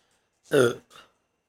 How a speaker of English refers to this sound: Belches. Sorry.